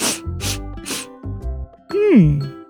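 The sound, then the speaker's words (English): Three quick, breathy sniffs in a row as a person sniffs a piece of ice up close, each a short hissing burst of air, followed by a low voiced murmur that slides downward in pitch. “Now I am going to bend my face very close to my ice and give it a big sniff.”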